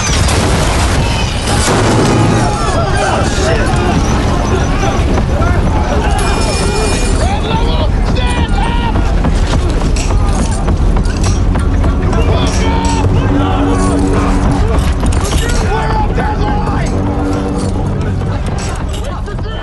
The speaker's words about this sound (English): Let's hear some of that. Let's hear some of that audio from when that the drums and the screaming as the airplane busts apart.